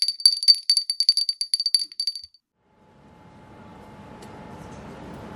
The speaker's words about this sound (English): Well, I'm sorry about the quality of the bell,